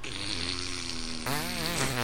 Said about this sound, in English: Oh, God. Their farts are worse in person.